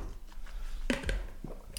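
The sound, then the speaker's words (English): A quick sip of water taken as a palate-cleansing drink during a blind beer taste test, with a couple of soft wet mouth sounds and a swallow over a quiet background. No one speaks. “Just going to have a cleansing water.”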